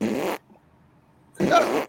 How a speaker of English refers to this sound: what are you doing? I'm farting.